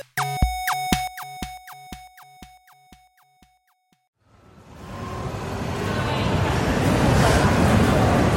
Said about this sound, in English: It's a bigger crowd than I had expected here today. I thought this was just going to be a small group. I think there aren't normally this many people who come, but this is a big day, with the carnival and all.